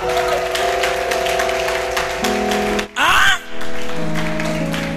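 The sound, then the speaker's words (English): An audience claps for the Lord, a dense, continuous, steady wash of hands, with sustained musical tones droning underneath and a brief swooping electronic sweep partway through. “Give the Lord a clap.”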